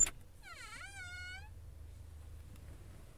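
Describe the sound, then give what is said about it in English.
A single drawn-out cat meow, about a second long, dipping then rising in pitch, heard alone over a low steady background rumble. “I heard a cat.”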